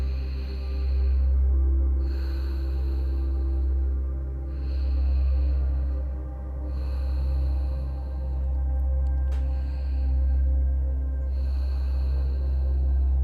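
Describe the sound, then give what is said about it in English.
Slow, deep conscious breathing rounds rise and fall in a steady rhythm, each airy inhale and exhale swelling softly over a constant low humming drone, with no talking. “Then soften and return back to your normal breathing rate.”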